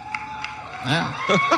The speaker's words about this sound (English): Yeah. People at the press corps cheering. The media.